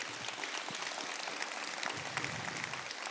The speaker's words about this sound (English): Did this bless you? There may be somebody. Yeah, go ahead and give the Lord a hand clap.